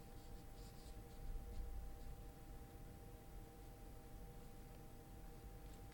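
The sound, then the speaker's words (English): Clue papers for a quiz being shuffled, a soft continuous rustling and scraping that swells briefly early on, then settles into quiet handling with no voices. “Excuse me, because I shuffle around the clue papers.”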